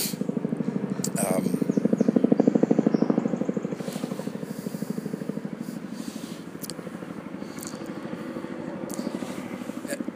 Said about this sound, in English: My fantasy is that the helicopter is, you know, it's for me, it's about me. It's time. It's going to land.